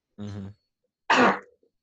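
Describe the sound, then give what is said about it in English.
A single sneeze: a short voiced, pitched intake, a brief pause, then a loud, harsh burst of breath that quickly fades. Nobody talks during it. “Excuse me, I'm going to sneak.”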